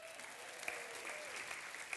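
Steady audience applause for a child called up to the front from the back of the audience, a dense wash of many hands clapping at moderate volume, sustained evenly for a couple of seconds with a few sharper claps standing out.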